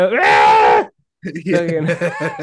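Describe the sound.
A voice imitates a koala's harsh mating scream: one long, loud, strained bellow, a brief pause, then a rougher, groaning, pulsing cry, raw.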